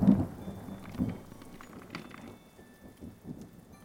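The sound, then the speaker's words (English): A thunderstorm rumbles: deep thunder rolls at the start and again around the first second, over a steady wash of heavy rain, with no voices. “The rain poured heavily outside as lightning began to strike.”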